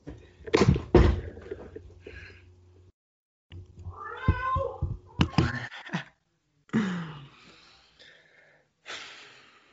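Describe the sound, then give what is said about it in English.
A cat meows several times to be let out, its cries mixed with snorting, breathy sounds and a few thumps, with brief silent gaps between bursts. “And hang on, I'm just going to let my cat out.”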